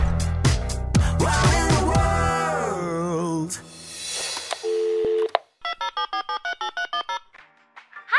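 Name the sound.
telephone line tone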